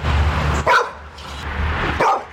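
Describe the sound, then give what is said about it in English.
A one-year-old golden retriever pup named Delta, who lives in the Alpha Gamma Rho fraternity house, barks twice. The barks are sharp, high-pitched yaps about a second and a half apart, fairly loud over a low steady hum of background noise. “Delta is a one-year-old golden retriever pup living in the Alpha Gamma Rho fraternity house, and she's become a bit of a celebrity around campus.”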